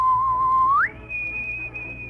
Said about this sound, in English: He whistled a tune to the window.